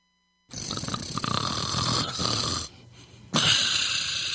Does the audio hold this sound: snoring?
yes